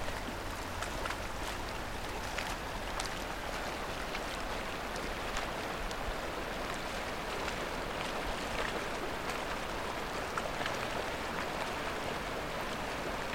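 The Ottawa River in Ottawa, where the current is quite strong, rushes steadily with a deep, continuous rumble, while sharp crackles and clinks of breaking ice pop up irregularly throughout. Recorded on January 29, 2017. No voices are heard.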